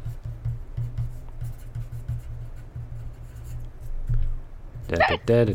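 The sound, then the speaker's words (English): A pencil scratches steadily across paper as someone writes down characters' skills and stamina, short rhythmic strokes continuing for several seconds before a voice cuts in briefly near the end. “I am now writing down their skills and stamina.”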